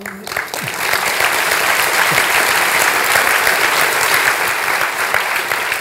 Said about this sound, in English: And can we do more of the applause at the very end? Sorry.